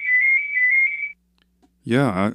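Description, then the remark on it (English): A telephone rings once with a steady, high-pitched electronic tone lasting about a second. A short silence follows before a person starts speaking in a rising, expressive voice. “It's just the telephone.”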